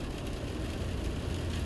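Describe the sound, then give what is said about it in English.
Rain patters steadily on a car windshield as the car drives up Allentown Road, over a low, continuous engine rumble, a soft even hiss with faint ticks and no voices. “You can hear the pitter-patter of the rain on my windshield.”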